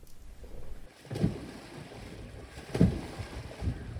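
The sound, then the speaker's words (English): Men submerged in indigo dye water kick it up into a froth, churning it in slow, rhythmic surges, with a few heavy splashes standing out against a steady low wash of sloshing and faint wind. “And the mesmerizing, ancient, and nowadays quite rare rhythm of men submerged in indigo water, kicking it up into a froth the color of sea foam.”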